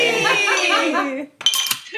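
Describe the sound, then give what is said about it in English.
A drawn-out voiced cheer gives way to a quick, bright clinking of glasses in a toast, a couple of ringing taps right after the voice stops. “Lucia and Senad. Cheers. Yee! To them.”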